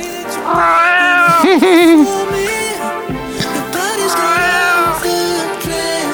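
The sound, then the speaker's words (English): Several cats meow loudly in a drawn-out, wavering chorus in a played song recording, long rising and falling yowls overlapping one another over a musical backing, prominent throughout. “They really went all in on those cats, huh?”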